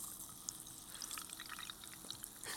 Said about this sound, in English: I've had the Mountain Dew... Oh, yeah, you hear that. You can hear the fizz. Oh, yeah.